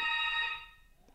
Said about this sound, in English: Sorry, that was the buzzer. I was going to say, have you still got a landline? I was like, is your landline ringing? Is that what's happening? It sounds like it. It's a very aggressive doorbell intercom.